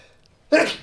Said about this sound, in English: Bless you.